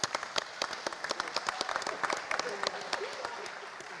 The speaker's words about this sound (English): Oh, sorry, round of applause for Andrew.